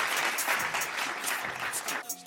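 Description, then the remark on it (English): A burst of clapping, dense and steady for about two seconds, sounding like a small group applauding before it quickly dies away. “You deserve a round of applause for that, y'all.”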